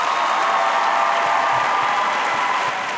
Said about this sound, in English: So, you know, clap it up for Shorty. Awesome.